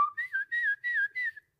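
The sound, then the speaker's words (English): A person imitates a grandfather's whistled call to his grandchildren: a short two-tone call, a rising note followed by four quick repeated phrases that dip and lift in pitch, clear and fairly soft, with no talking. “And he would just whistle and be like this.”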